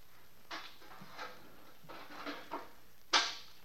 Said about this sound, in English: Then I heard the door open.